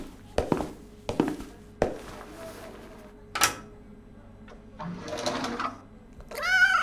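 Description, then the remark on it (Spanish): A few sharp clattering knocks and a soft mechanical rustle, then a single short meow from the cat Missy Fuss bursts out loudly right at the end. “muéstrenos dónde está el gato.”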